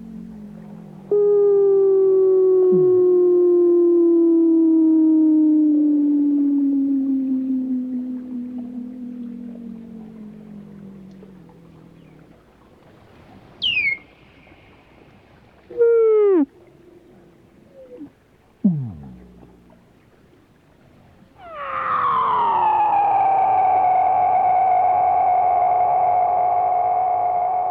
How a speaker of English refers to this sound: These mournful cries are sometimes so loud they can be heard above the ice. These Weddell seals were recorded in McMurdo Sound by Dr. Ian Sterling for the British Library ….